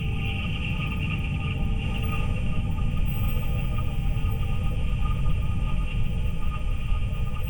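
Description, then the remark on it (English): NASA's Perseverance rover's thermal system whirs steadily for the whole stretch, recorded by a microphone aboard the rover as it travels through deep space toward Mars at more than 50,000 miles per hour in January 2021: a continuous mechanical drone with thin sustained tones over a dense, crackly low rumble. No voices. “They are the sounds recorded by a microphone aboard Perseverance, picking up the whir of the rover's thermal system as it hurtles through deep space at a speed of more than 50,000 miles per hour.”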